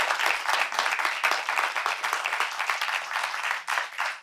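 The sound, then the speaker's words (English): A crowd applauds the three candidates Gina Viola, Kevin De León and Karen Bass at the end of a KCRW and LA Times forum: a dense wash of many hands clapping at once, loud and sustained throughout with no voices standing out. “Round of applause.”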